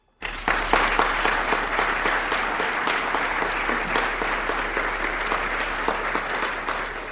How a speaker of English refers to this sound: we should give our thanks to and applaud them because we are going to be providing services for them.